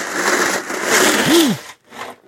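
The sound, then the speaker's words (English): Ice water sloshing and rattling in a glass, a loud, continuous clattering wash lasting over a second, then a short pause and a brief second rattle. No one speaks. “Ooh, sorry, that was ice water. Pretty loud.”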